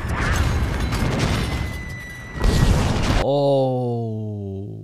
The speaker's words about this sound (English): Oh, so many explosions. Okay. Like so many little ones.